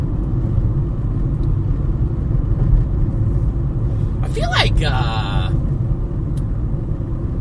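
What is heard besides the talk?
car driving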